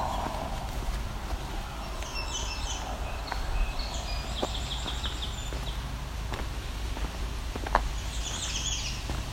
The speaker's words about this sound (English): There's a Redstart. It's typical one where the note isn't different.